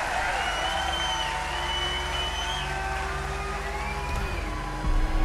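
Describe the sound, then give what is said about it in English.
A large circus crowd cheers and claps in a dense, steady roar that runs unbroken for several seconds, with faint tonal whistling threaded through the noise and a brief swell near the end. “All the while, the crowd cheers, and Silver stares after them in suspicion.”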